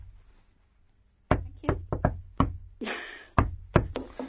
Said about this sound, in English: I'll leave it on there. Universal knock.